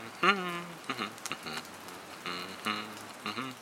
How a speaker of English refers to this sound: And also, it rained.